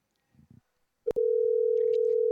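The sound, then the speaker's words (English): A loud, steady electronic phone tone starts abruptly after a few soft muffled knocks and holds unbroken to the end, like a line ringing on an outgoing call, with faint background sounds beneath. “It's ringing.”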